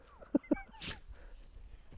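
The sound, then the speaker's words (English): A dog lets out two quick, sharp yips in succession, followed by a brief whine and a breathy rush of noise, then fades into quiet background. “My dog isn't going to let me. Go. Stupid animal.”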